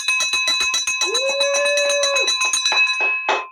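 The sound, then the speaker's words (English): A handheld school recess bell of the kind teachers used, rung as a victory bell, clangs rapidly and loudly, its bright metallic strikes repeating in a fast shaking rhythm with a ringing tone sustained underneath, with no talking. “Like, this is one of those ones that are handheld that this, like, the teachers used to use out at recess.”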